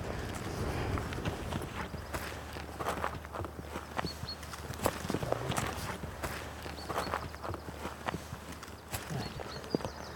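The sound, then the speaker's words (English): Footsteps of a person walking up hilly terrain in eagle territory near an eagle nest, a steady run of crunching, uneven steps over a constant low rumble, with no one talking. “I'm going to go up and sit in my favourite spot.”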